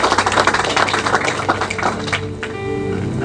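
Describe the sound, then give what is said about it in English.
An audience claps in a dense, steady wash of applause for about two seconds, then the clapping thins as sustained tonal notes, like a keyboard chord, carry on underneath. “Oh, if you're clapping, clap well.”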